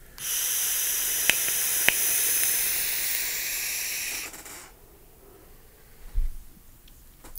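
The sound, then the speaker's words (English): A small RTA vape with a roughly 2 ml tank and a 0.3 ohm coil, set to 66 watts at 4.5 volts, gives a steady, bright hiss for about four seconds during a draw, with two sharp ticks partway through, then cuts off, leaving low background noise and a soft thump near the end. “It is a nice little vape.”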